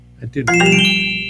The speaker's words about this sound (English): I think that's your doorbell.